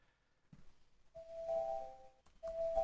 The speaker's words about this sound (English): Did you hear that? Yeah, I think that was on your end. This is my doorbell. Ring ring.